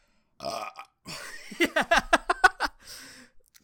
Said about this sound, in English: That was a lot of burning. It didn't that actually burn that much. It was, yeah, mostly just burps.